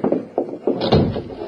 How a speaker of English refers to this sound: Close that door behind you